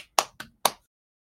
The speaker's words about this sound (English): You hear clapping.